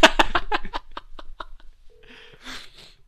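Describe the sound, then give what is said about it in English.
A burst of rhythmic laughter fades out, followed by a short electronic telephone keypad tone and a brief rush of noise as somebody calls on the phone, moderately loud. “Somebody's calling. It was the phone. I hope it just presses 6 3 times.”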